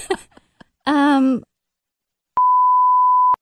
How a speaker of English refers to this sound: Can we beep this? Yes. Of course.